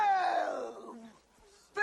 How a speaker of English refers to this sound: Congratulations, Buster. Oh, hey, the booing. Now listen, I know this is controversial.